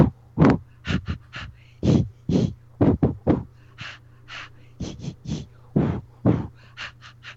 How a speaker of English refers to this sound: It's a breathing, laughter exercise. What happens is, it's like the swimmers in the Olympics. You know, they're out there swimming. They're coming up for breath at regular intervals.